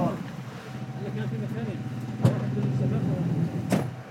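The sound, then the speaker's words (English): A car door opens with a sharp clunk as people get out of the car in Marajda, followed by a second thud a moment later, over a steady idling engine and low murmuring voices inside the vehicle. “Yes, we will get out from the car here.”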